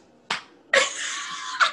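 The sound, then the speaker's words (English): A sharp hand slap, then a quick flurry of rapid slapping demonstrated by hand that blurs into a sustained, papery patter and ends on one last smack. Fairly loud, with no talking. “Just like a lot of slapping.”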